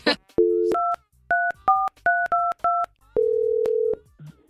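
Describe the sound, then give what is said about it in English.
A short dial tone gives way to six quick telephone keypad beeps in an uneven rhythm as a man's wife is called, followed by a longer steady tone. Loud and clean, with no one talking. “I think we get your wife on the phone right now.”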